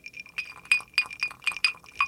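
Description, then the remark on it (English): Two people clink glasses together in a toast in a quick series of bright, ringing taps, about six in a row at an uneven pace, each leaving a short high chime. Fairly loud, with no talking. “coming to you this week with a little ringy-ringy.”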